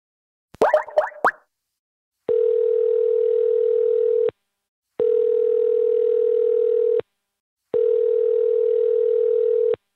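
A quick burst of telephone keypad tones, then three long, steady ringing tones on the line, each about two seconds long with short gaps of silence between them. Nobody speaks.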